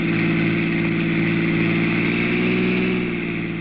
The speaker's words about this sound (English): Your car roars past Mary's car within a few miles, and you leave her behind.